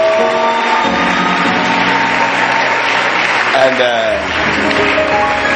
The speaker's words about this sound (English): So let's welcome him with a better hand clap.